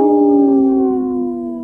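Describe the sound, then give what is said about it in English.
Several people howl together in imitation of wolves, one loud sustained tone with harmonizing voices that slowly slides downward in pitch and fades slightly near the end. “This portion of the show is supported by Howling for Wolves, protecting wolves for future generations.”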